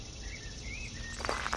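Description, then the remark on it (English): Cicadas buzz in a steady, shimmering drone across an otherwise quiet outdoor scene, with a few soft scuffing sounds near the end. “It's quiet, save the cicadas.”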